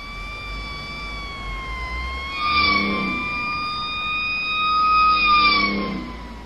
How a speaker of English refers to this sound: What's that? Sirens? Oh, damn it. That's not good.